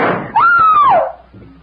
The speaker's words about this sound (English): That shot may have been heard.